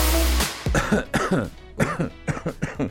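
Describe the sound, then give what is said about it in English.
A string of short, throaty coughs in quick succession, fairly loud, coming in uneven bursts after a brief rush of noise at the start, with no talking. “It's to do with coughing.”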